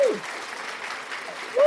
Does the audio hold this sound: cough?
no